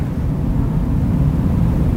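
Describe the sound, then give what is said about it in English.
A steady, whooshing rush of air from an overhead air-conditioning vent, recorded with a microphone placed on the vent, heavy in low rumbling tones with a soft hiss above, holding an even loudness throughout without pauses or voices. “You know, the ventilator is just, you know, to your naked ear, it's, you know, it's air conditioning sounds, just a kind of, you know, just a whooshy kind of air vent sound.”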